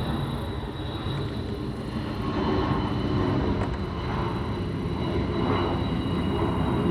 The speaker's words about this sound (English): Oh, look at that. What? That's the Dreamliner. Or no, wait, that's a... It's a 747 because it's got the four engines on it.